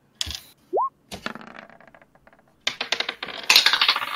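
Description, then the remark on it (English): Dice clatter and tumble across a hard tabletop in several quick rattling bursts, fairly loud, with a brief squeak early on and no voices, as players roll for an insight check. “No, I need you guys to roll insight, actually.”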